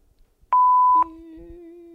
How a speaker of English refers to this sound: Beep. It's a voicemail starting.